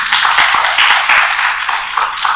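An audience claps hands together for a fellow brother hailed as a disciple of the Lord, in a dense, steady burst of applause, many overlapping sharp claps forming a loud, bright wash with no voices heard.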